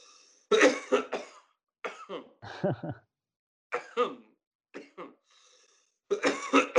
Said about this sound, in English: Coughing's the one thing you can't get around with weed. Oh, so that one got me, man.